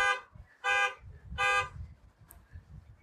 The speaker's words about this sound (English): Somebody didn't know how to work the car alarm. No, they did not.